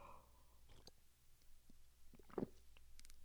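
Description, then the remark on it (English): A quiet slurping sip of Yunnan tea: a few soft, wet mouth noises, with one louder gurgling slurp in the middle and faint clicks around it. No one speaks. “Sorry about the slurping, but it's a really good tea.”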